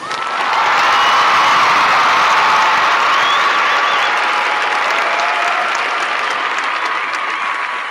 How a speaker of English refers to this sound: I want to give an applause to the fans for listening to us, or the listeners for listening to us, and just say thank you so much.